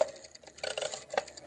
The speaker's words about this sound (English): You make your own money, just exactly the way the government does. Now, you put this blank piece of paper in the machine. Uh-huh. You turn the crank.